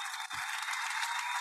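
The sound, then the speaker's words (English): An audience claps steadily throughout for two guests at a morning event, a dense crackling wash of many hands with no pauses, moderately loud, with no voices over it. “So let's give you a round of applause.”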